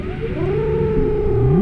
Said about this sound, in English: A baleen whale, by the look of it. What in the wow? It must be more than 50 feet long. Yeah, it's almost as big as two school buses back to back.